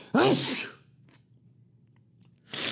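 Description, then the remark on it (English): A single loud sneeze bursts out with a voiced gasp, followed by near silence and then a short, breathy rush of air about two seconds later. “About to sneeze.”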